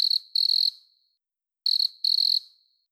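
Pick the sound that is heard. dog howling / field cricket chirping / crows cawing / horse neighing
field cricket chirping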